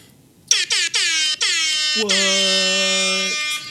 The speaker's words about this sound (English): So I haven't been able to push that that air horn in a while because we've been batch recording these a little bit in advance. So it was fun to push that.